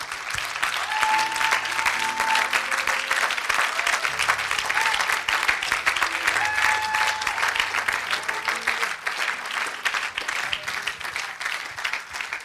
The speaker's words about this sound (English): If you have something in your hand, just put it down and let's just clap our hands to the Lord.